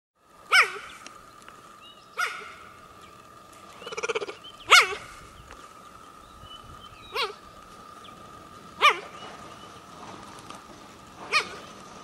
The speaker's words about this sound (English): And they also sometimes will bark like a puppy to find mates or to locate their young or their family.